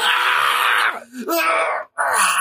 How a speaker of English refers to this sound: He just like slides in there and starts getting chewed up. Yep. And then that's a blood curdling scream.